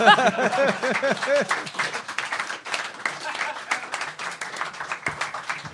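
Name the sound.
applause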